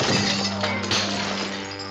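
A basketball, which kids lost control of on a floating staircase, smacks into Mom's favorite ceramic vase, which shatters in a sharp, bright crash followed by a second clattering burst of breaking pieces, over a steady low hum.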